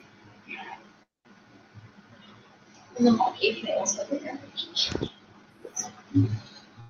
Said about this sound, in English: I had a really big sneeze, and I like my body shook.